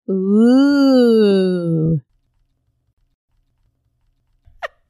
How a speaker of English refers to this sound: Why? Why? I burped. It's a natural thing.